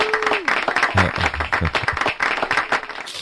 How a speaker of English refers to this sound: Well, you got your applause. You were waiting. Finally. I was wondering where all the studio audience was.